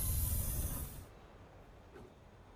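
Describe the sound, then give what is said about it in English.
A loud burst of steam hissing like a train releasing pressure, a train sound effect lasting about a second before cutting off to a faint low background rumble. No one speaks. “I feel like we just settled on a train, and this could have been more.”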